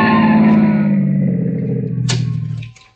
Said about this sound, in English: The driver is weaving recklessly in and out of traffic. A dozen times, accidents are only narrowly averted. Finally, a pursuing police car forces them over to the curb.